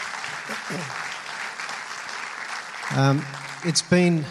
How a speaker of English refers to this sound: So I think we should give him a big round of applause for doing it.